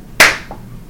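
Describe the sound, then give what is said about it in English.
A single soft, weak hand clap with a sharp onset and a brief decaying tail, followed by a faint muffled knock and quiet background. “That was a weakish clap.”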